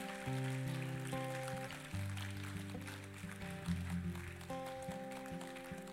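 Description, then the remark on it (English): Many hands clap in a dense, continuous patter from a church audience during an altar call, blending into a steady wash over sustained organ or keyboard chords that shift every second or two. “I bet if you clap, they'll come.”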